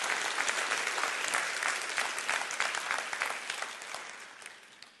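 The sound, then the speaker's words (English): An audience claps and applauds to rejoice in faith in God, a dense, steady patter of many hands that stays loud for several seconds, then gradually thins and fades toward the end. “Would you clap your hands and rejoice in that?”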